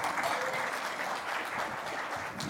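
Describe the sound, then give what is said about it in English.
A crowd applauds after a Bible passage is read aloud, with steady, dense clapping that holds at an even loudness throughout, with no voices standing out above it. “Don't clap for him.”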